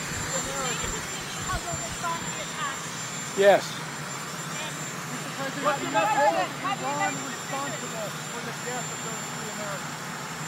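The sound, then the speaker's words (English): A helicopter engine runs outdoors on the White House grounds, a loud steady whine and rumble that holds throughout. Over it, President Biden, on his way to the helicopter, takes questions about the Houthis and Iran in short exchanges. “We have President Biden stopping to take questions about the Houthis and about Iran on his way to a helicopter on the White House grounds.”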